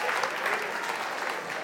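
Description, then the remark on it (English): A crowd applauds steadily, a dense, even wash of many hands clapping at once that holds at a consistent moderate level throughout without breaks or talk. “Why do you clap more for that?”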